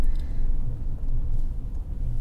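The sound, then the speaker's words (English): Steady low rumble of a hydrogen fuel cell car driving through London traffic, with road noise droning continuously and no voices. “Yes, even in a hydrogen fuel cell vehicle, negotiating London traffic is still a little bit primitive.”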